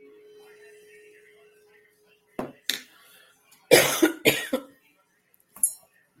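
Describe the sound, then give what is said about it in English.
A string of harsh coughs from someone struggling with a minor illness: two short ones, then a heavier burst of three in quick succession, and a final lighter cough, with quiet gaps between them. “Excuse me, guys. I have been struggling with the crud just a little bit.”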